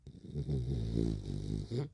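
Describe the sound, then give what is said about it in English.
A dog named Binks snores while asleep, a low, rattling rumble that carries steadily through the breath, briefly eases, then rises again at the end. No one speaks. “wanted to say that I hope you're into the snoring of a dog, because my co-host this episode is Binks, and as usual, he's sleeping on the job.”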